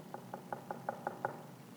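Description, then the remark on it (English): Seven quick, evenly spaced knocks on a door, each a crisp hollow rap, rising slightly in force and then stopping, with nothing else around them. “but the scripture tells us that when we pray, we can ask, we can seek, and we can even knock.”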